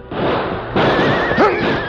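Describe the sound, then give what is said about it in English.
A horse neighs loudly, a rising, wavering whinny over a dense, noisy background rumble, as riders guide their horses along a deeply shattered canyon at Cub Pass; no voices present. “As they guided their horses along the deeply shattered canyon”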